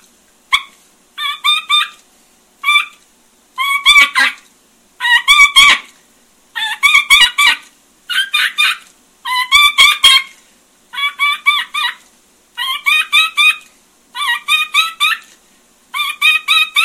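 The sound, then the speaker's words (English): Loud turkey hen calling imitated on a call as a demonstration: rhythmic bursts of raspy yelps mixed with quick, sharp cutting notes, repeated steadily for the whole stretch with no talking. “Now, as I'm demonstrating that call, you can't see it, but I've got two hens sitting right there in a picture of a hen, and I'm looking at those hens when I'm doing them calls.”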